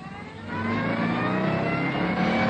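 A sports car engine revs up and accelerates, its harmonic whine rising steadily and loudly, with no voices.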